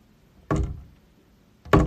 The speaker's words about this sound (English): It's just a knocking from the armoire, but the armoire echoes because it's kind of hollow on the inside.